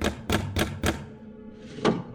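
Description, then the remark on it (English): Four quick, evenly spaced knocks on a door, sharp and fairly loud, followed after a short pause by one more knock with a softer rustling before it. “Here's the door.”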